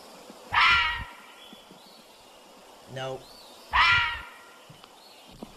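Two loud, harsh screaming cries about three seconds apart, each a strained, raspy shriek, with a shorter rising wail between them: the call of a fisher cat.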